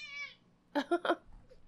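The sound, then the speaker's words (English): A cat named Kurt meows: a soft, drawn-out high mew fades away, then three short, louder meows come in quick succession. No one speaks. “Give me this cat.”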